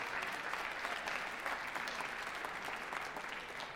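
An audience claps steadily, a dense wash of many hands at even, sustained loudness with no voices breaking through.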